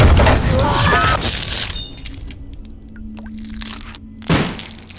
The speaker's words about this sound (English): A Gauss cannon will do that to you. I find that shooting a 1 kilogram rod of tungsten into anything usually puts a smile on my face.